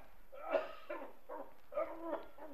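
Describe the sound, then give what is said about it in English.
A man coughs several times in a row, fairly quiet, a series of short rough hacking bursts with no talking. “I heard him cough. Did you hear that cough?”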